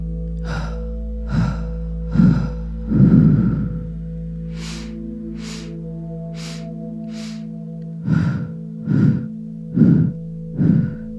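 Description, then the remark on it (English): A run of deep, airy breaths in a steady rhythm, fairly loud, some heavier and some thin and whispery, over a constant low humming drone with no talking. “I'll just keep breathing, keep going.”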